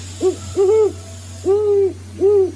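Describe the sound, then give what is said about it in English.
A great horned owl hoots four times in a deep, steady sequence, two short notes followed by two longer ones, clear over a faint low hum with no talking. “Here's a great horned owl.”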